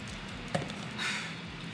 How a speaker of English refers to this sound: I'm actually gonna pour some Tisdale.